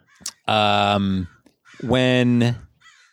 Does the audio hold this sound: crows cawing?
yes